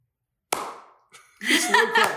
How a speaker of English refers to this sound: Etch is back, woo-hoo, everybody. Woo-hoo. That's a full clap.